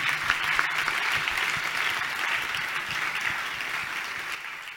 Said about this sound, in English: Clap for God.